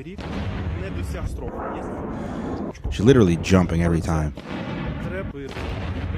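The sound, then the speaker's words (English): Fireworks bang repeatedly, sharp loud bursts every few seconds, while a person talks over them. “She's not going to want to go to fireworks ever again.”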